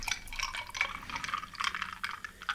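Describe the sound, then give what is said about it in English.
Beach plum flavored liquid pours into a glass, a steady bubbling, splashing stream with little gurgling surges for a couple of seconds, and no voices. “And then I'm going to pour in this.”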